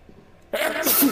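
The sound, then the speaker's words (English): After a brief near-silent pause, a single sudden sneeze bursts out loud, a sharp breathy blast of noise that holds for about half a second. “Bless you. Bless you.”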